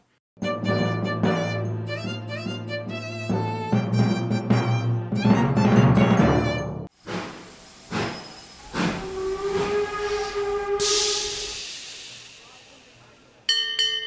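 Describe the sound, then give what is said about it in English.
A loud, multi-toned steam whistle blows for several seconds, followed by short bursts of escaping steam and a long, bright hiss that cuts off abruptly. “you look lovely in steam.”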